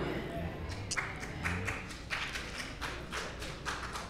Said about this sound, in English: You heard four claps because some women like, look, I'm taking care of my man.